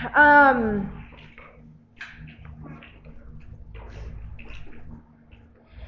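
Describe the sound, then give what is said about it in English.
Water is poured for a drink and sloshes for several seconds, a soft, uneven liquid trickle against a low background hum, opening with a brief squeaky, falling tone. “Just take some water.”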